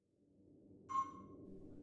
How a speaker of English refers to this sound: Oh, Alberta, it's working. I hear the beeping.